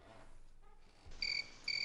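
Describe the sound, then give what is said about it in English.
Crickets chirp in two short, shrill bursts over a quiet, hushed background, with no voices, clear. “Yeah, crickets.”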